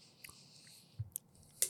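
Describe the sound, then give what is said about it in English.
Chewing of crunchy edible crickets, with a few sharp, crackly bites scattered over a quiet moment and the loudest crunch near the end. No one speaks. “When you hit that first like outer skin, it's very like crunch.”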